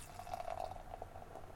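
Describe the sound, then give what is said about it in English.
A steady stream of West Coast Double IPA beer pours into a glass, with a bubbly, gurgling fizz rising and settling over a second and a half, fairly quiet with no voices. “I want to pop open that West Coast Double IPA. Yeah. Oh, my top. Ooh. And the pour.”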